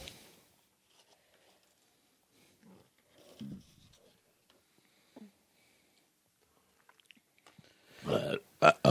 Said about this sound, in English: You burped and said, uh-oh, as you were burping.